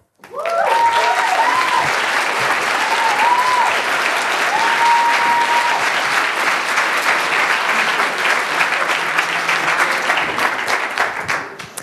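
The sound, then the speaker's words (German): Sustained applause from a sizeable audience welcoming speakers introduced for a talk, a dense, steady clatter of many hands clapping for about twelve seconds, with a few faint whistles or cheers rising briefly above it. “Danke für die freundliche Begrüßung und den Applaus und schön, dass ihr da seid.”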